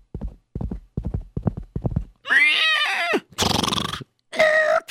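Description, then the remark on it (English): Hooves clip-clop in a quick, even rhythm for about two seconds as a man rides his horse back home, then the horse lets out several loud whinnying neighs with a shaky, wavering pitch. No one speaks. “And he got on his horse. And he went back home.”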